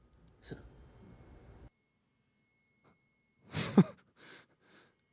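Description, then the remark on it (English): A man's gentle sneeze, one soft breathy burst with a brief squeaky catch, followed by two faint exhaled huffs. Quiet overall, with no talking. “He just sneezed like the cutest bitch of all time.”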